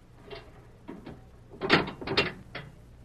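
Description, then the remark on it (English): A jail cell door being unlocked by a sheriff: a few soft metallic clicks, then a cluster of louder clanks and rattles of the lock and bars, with no voices. “The sheriff's going to unlock your door and let you out.”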